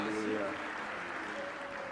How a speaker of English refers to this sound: Let's give God a big clap offering as we take our seats. Hallelujah.